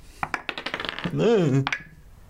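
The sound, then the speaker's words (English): Dice rattle and clack across a hard tabletop in a quick run of bright clicks, rolled for a perception check in a tabletop role-playing game, followed by a rising-and-falling vocal exclamation and a final small click. “Perception check.”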